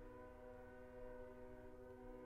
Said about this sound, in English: So... here come the train.